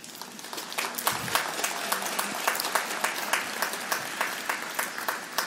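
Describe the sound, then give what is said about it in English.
An audience applauds steadily for several seconds, a dense wash of many hands clapping at an even, sustained level with sharp individual claps poking through. “I'll let Tim and Cory know you applauded.”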